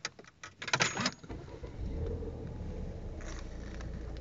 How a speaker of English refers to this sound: Right, let me just put the engine on.